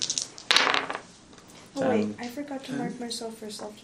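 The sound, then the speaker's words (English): Six-sided dice clatter across a hard tabletop in a short, rattling burst during a tabletop game. Afterward a person starts talking. “Don't move those dice.”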